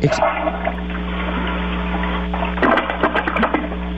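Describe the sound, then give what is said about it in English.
A toilet flushes with a steady, loud rush of water over a low hum, the gushing swelling into a burst of gurgling and splashing toward the end. “Was that a toilet flushing?”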